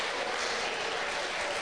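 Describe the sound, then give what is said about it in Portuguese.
A crowd claps steadily for a person, a dense, continuous wash of many hands applauding at once, loud and sustained throughout with no voices standing out. “And clap for the person. Clap for the person.”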